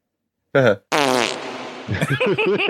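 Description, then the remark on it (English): Two loud fart noises, a short blurt followed by a longer sputtering one that trails off, likely imitated with the mouth, then a voice begins talking over the end. “It reminded me of The Simpsons when Burns is on that radio show and he's like, no, stop the farting, and claps is like plur, plur.”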